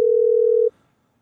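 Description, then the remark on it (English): A phone line rings out with one steady electronic ringback tone lasting well under a second, then cuts to silence with no answer and no voices. “Because maybe they're not answering the phone because they're listening.”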